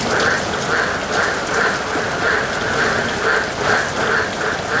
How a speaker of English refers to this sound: Well, the monsoon, it has well and truly hit the top end. There's a lot of nice, cool rain scattered right across the top end at the moment.